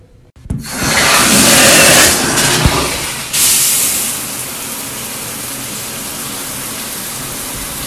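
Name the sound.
shower water running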